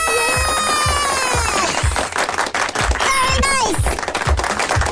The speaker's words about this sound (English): stop with the clapping there, would you stop that, please?